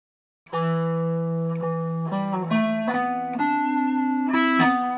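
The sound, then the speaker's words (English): A guitar plucked over the fingerboard, about 12 frets higher than the fretted notes, plays a short run of sustained notes with a mellow, nasal, almost reedy, clarinet-like tone, steady in volume, with no voices. “If you play something and then you literally play about 12 frets higher than where you're playing, so you're plucking over the fingerboard, really.”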